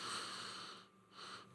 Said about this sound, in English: I don't know if that sniff came through on the microphone, but I gave her a good old nose there, and it's smelling pretty good.